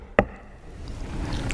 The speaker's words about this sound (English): The master of the house is not beating the door down. He's knocking.